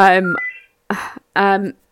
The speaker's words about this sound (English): Apologies, the phone's ringing in the background.